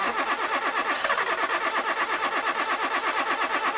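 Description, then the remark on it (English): A car engine cranks over and over without catching in a Seafoam Motor Treatment commercial, a steady rhythmic churning from the starter, fairly loud for the whole stretch, with no voices. “Want to stop engine problems before they start?”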